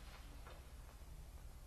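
A clock ticks softly and steadily, a few faint, evenly spaced ticks over a low background hum, with no voices present.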